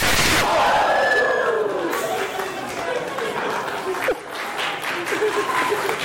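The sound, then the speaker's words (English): An audience claps steadily for about six seconds for two boy volunteers after they held a stick together during a countdown demonstration, a dense, even patter of hands mixed with scattered cheers and excited voices that hold at a fairly loud, constant level. “Let's give a round of applause to our volunteers.”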